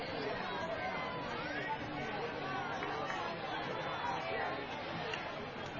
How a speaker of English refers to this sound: As the crowd starts to head to the exits